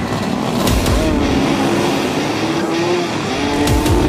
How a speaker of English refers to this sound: taking him on in what is the most glorious of motorsports, modified lawnmower racing.